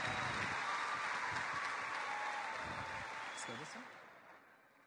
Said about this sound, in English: you deserve a tremendous round of applause for your efforts for this